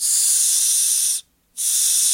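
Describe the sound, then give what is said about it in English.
A voice imitates the hiss of a breathing machine that shoots air into the nose: a steady, bright, airy rush, broken by one short silent gap, then resuming at the same strong level. No words are spoken. “Is the machine loud? The machine itself? The machine is like this.”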